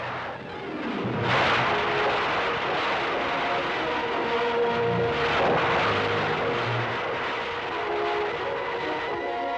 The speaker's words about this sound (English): The burst of the rockets sends Colonel Stapp down the track at 421 miles an hour, faster than any man has traveled on land.